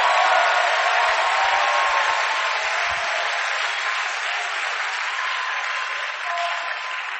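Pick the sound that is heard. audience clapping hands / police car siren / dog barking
audience clapping hands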